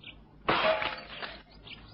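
Studio window glass is broken in to get inside: a sudden loud crash of breaking glass, followed by a second of tinkling, scattering shards that fade out, with a faint high chirp briefly at the start and end.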